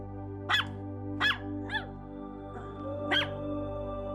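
A dog barks four times in short, sharp bursts with irregular gaps, one softer and yelpier than the rest, over a steady low electrical hum.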